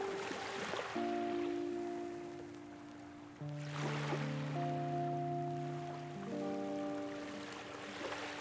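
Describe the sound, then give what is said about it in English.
Small, gentle waves of a calm sea glide slowly in over flat sand and recede in soft, repeating swells every few seconds, with a steady layer of sustained, calm musical tones playing over the water. “The sea is calm, small waves glide slowly over the flat sands, they're cast through with swirls of light, and the soft sound they make is like breathing.”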